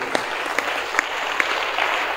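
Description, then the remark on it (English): A church audience applauds steadily and densely, with a few sharper, louder claps standing out at a regular, roughly even beat throughout. “You are not clapping, you are envious.”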